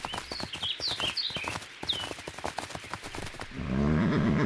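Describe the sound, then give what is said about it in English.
A horse that has just been shot cries out in distress with shrill, rising whinnies over a flurry of sharp knocks and scuffles, then a loud, low rumbling roar swells up and drowns everything near the end. “You shot his horse!”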